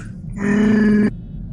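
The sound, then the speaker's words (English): A person's voice imitates a Wookiee's roar: one sustained, steady, moaning bellow lasting under a second, loud, then cutting off abruptly into quiet. “It sounds like a moose. It's a Wookiee moose.”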